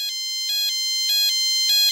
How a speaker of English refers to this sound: but there was an option to play a kind of standard alarm tone, which did play through the iPod speaker. So I fired up my third generation iPod with its, you know, one-off red buttons and recorded what that alarm sounded like here.